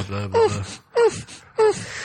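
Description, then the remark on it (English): Three unsettling ghostly moans in a row, each a short, drawn-out wail that slides downward in pitch, evenly spaced with brief pauses between, moderately loud with no talking. “Those kind of unsettling moaning sounds.”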